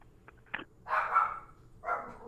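Dogs bark in a few quick bursts, a sharp yap followed by two longer, fuller barks, with a faint background hum and no talking.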